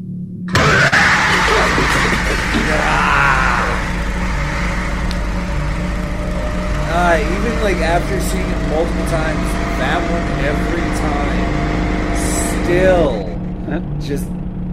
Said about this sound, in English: Best part is when they show that part, not only there's the screaming and the sound of the lawnmower, but you can hear the bones inside the lawnmower.